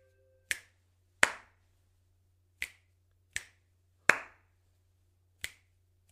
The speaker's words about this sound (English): It was two snaps and then a clap.